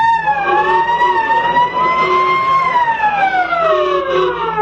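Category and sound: vehicle, fire engine sirens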